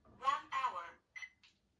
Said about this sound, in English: And we're gonna set the timer for 1 hour.